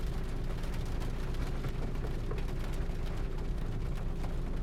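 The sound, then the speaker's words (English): Heavy rain drums steadily on a car's roof at night, a dense, continuous patter with a deep, muffled rumble underneath and no pauses over the whole stretch, heard from inside the car. “We're sitting in the car listening to the rain and we are not feeling it.”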